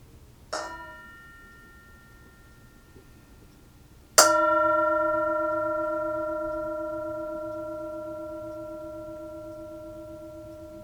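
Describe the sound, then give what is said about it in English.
A meditation bell is struck twice, first a soft tap, then a full, clear strike whose bright, layered tones ring on and slowly fade for several seconds, with no voices. “Here's the bell. Enjoy the moment. Enjoy the sound of the bell.”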